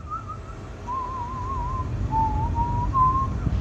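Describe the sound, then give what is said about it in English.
A slow, wavering whistled tune, heard in a walk-in closet, drifts through several long held notes for about 10 seconds over a low, steady background rumble, sounding thin and eerie, with no talking. “They said they were standing in there, and while standing in there, they just hear something whistling at them.”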